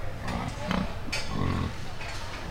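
A pig grunts a few times while being weighed on a scale at a livestock show: short low snorting bursts followed by a longer rumbling grunt, over steady background noise.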